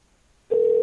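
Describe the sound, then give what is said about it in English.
After a short stretch of near silence, a steady electronic telephone ringing tone begins as a call is placed, loud, holding one even pitch until the end. “It's ringing.”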